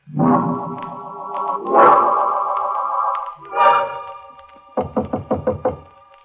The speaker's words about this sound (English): He's come. He knocks on my door. Fate knocks. Patiently. Once, twice, three.